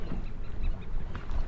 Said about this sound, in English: on the bow of the boat again, on our foredeck, enjoying Deception Island, listening to the seagulls.